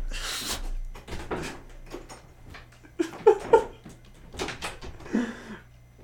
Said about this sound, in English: just actually walked out the door. He's walking down the stairs